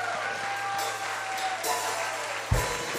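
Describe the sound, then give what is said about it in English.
Worshippers at a church service clap together for God in a steady, dense wash of applause that holds an even level throughout, with a brief low thump near the end and a faint tone running underneath. “Put your best hand clap together for God and say amen.”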